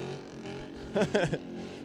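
The engine of an older-generation Dodge Challenger SRT8 muscle car, not a Hellcat, gives a few quick revving blips from across the street, short throaty bursts rising above a steady background hum.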